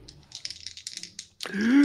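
Two dice clatter and tumble in a quick, bright run of small clicks for over a second, then a voice starts speaking as the rattling stops.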